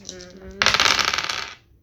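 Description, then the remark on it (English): A handful of dice rattle and clatter across a hard table for about a second, fairly loud, with a fainter tonal sound just before and no one speaking. “Still needs 3 more dice.”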